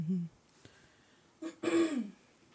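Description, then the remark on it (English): A person clears their throat in a rough, raspy burst after a short vocal hum, with a brief click in between and quiet room tone around it. “I feel like I have to clear my throat on every podcast.”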